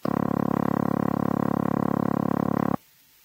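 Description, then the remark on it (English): A continuous telephone dialing tone, a low, buzzy, steady hum held at even loudness for nearly three seconds before cutting off abruptly into silence. “Now run over these four tones again. Dialing tone.”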